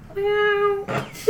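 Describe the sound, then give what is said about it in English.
A neighbor's cat lets out a single drawn-out, steady meow, followed by a brief breathy rustle and the start of another short call. “Our neighbor's cat is here.”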